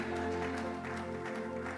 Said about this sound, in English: Give the Lord a big amen and a clap in the house.